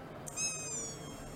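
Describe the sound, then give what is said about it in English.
A voice imitates a mosquito buzzing past the ear into a microphone: a thin, high-pitched nasal whine held for about half a second, drifting slightly lower in pitch as it fades, with no talking. “Someone listening, it's a fucking mosquito.”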